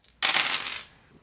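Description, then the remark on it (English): Three dice clatter across a hard tabletop in one quick, bright burst of rattling that settles within about half a second, rolled for damage in a tabletop game, with no voices. “And then I roll three dice for damage, all out for 3d plus 5.”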